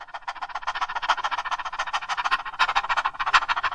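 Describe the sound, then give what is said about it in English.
A person imitates a panting dog with quick, breathy huffs, roughly five per second in a steady, unbroken rhythm. The airy pants are fairly loud and continue alone with no talking. “Do you know how a dog pants? Breathe in. And now as you breathe out, pant.”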